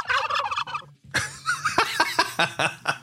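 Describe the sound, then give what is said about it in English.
A turkey gobbles loudly, a rapid warbling burst followed after a brief pause by a longer run of throaty, pulsing gobble notes. “Here's a turkey.”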